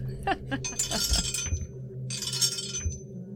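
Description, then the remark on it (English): Dice clatter and clink in two quick bursts of hard, rattling taps as they are rolled for an attack, with a low background hum and faint voices underneath. “Oh, wrong dice.”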